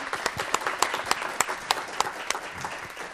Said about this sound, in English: Okay, let's give our speakers a round of applause.